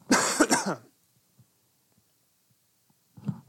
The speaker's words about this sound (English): Sorry, we don't have a cough button here at the Cule Show studio